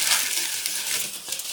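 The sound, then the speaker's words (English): Non-recyclable plastic packaging crinkles and rustles continuously as it is stuffed into a trash bag, a bright crackling texture with small irregular crunches and no talking. “Well, the plastic can't be recycled. We'll put the plastic in the trash bag.”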